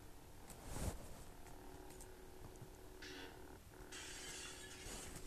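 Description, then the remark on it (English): Glass is broken with a lightsaber: a sharp crash of breaking glass rings out near the start, followed by bursts of bright, hissy tinkling like shards scattering, all fairly quiet against a steady low hum. “If you have a, realistic crowbar or a lightsaber like me, you can break the glass.”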